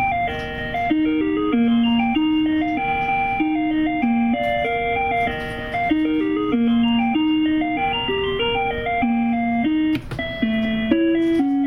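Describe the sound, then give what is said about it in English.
An electronic bell chime from a device plays a bright, steady melody of stepped tones after a button on its top row is pressed, loud and continuous, with a slightly buzzy synthetic timbre and no voices over it. “And if I press it, when I press it again, that's just the there's time a bell, another bell, off.”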